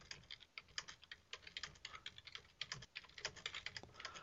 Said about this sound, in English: I can hear you punching the keys. I'm just chatting with those in the chat room.